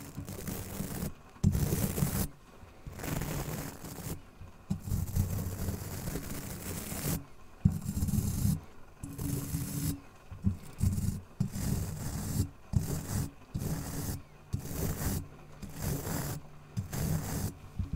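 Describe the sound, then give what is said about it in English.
Brush bristles stroking across a microphone in repeated bursts of scratchy, rustling friction, loud, with short pauses between strokes and no talking. “Okay, do you prefer this type of brushing on a mic?”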